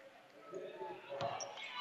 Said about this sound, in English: She'll drive. She'll run into the defense. She'll lose the basketball. And then dribbling out with it. The Wildcats can't handle it.